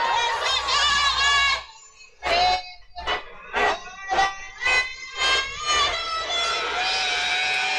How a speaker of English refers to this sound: She's getting booed.